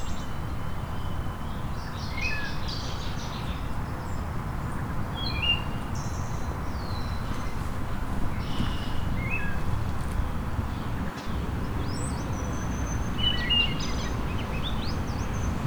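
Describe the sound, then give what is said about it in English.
A crowned kinglet sings high, thin notes and short twittering phrases in scattered bursts over a steady rumble of outdoor background noise, fairly faint, with no talking. “So it would be crowned kinglet again.”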